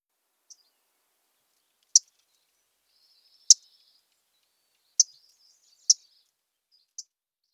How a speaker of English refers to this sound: The McGilvery's warbler most common call is a loud tink. It is louder and sharper than most other warbler call notes.